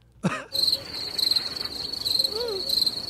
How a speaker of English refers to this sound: It's through Bluetooth, so if there's something going on, who knows? I don't know. There you go. Maybe it was being blocked. I moved it. How's that? Now try the crickets again.